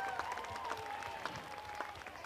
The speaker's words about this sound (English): Performance by our …. If you'd like to give them a round of applause, that was absolutely incredible. Thanks, guys.